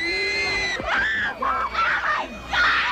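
A crowd shrieks with excitement, shrill high-pitched screams rising and falling in overlapping waves, loud and close, with no talking.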